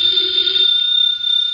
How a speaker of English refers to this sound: Should never ignore a phone call.